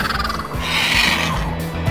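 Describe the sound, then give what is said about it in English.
A raspy, drawn-out red-tailed hawk scream rises for about half a second over a low, rhythmic musical bed, fairly loud, with no voices. “in a broken-down car in the middle of the desert surrounded by red-tailed hawks.”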